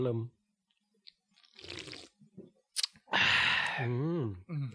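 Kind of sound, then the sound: food or drink, sipping beer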